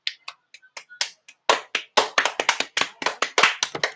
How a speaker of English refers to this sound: Woo-hoo-hoo! Round of applause.